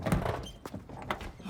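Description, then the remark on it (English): A door with a button under its handle is opened after the button is pressed in, making a couple of dull thunks about half a second apart, over faint rustling and handling noise, with no one speaking. “Open the door.”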